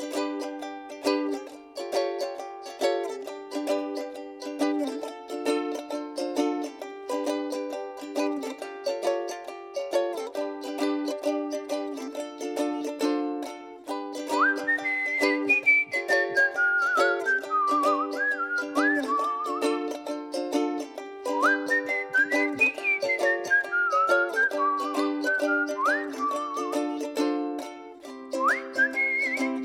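Gallery map theme music from Toad Story, the second or third world of a video game: a bouncy, repeating chord pattern with a bright, whistle-like lead melody that slides and swoops in partway through, steady in volume with no talking.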